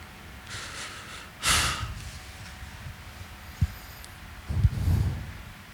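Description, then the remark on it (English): A person yawns: a sharp breathy inhale, then a low, drawn-out groaning exhale near the end, with quiet rustling in between. “Oh, I was yawning.”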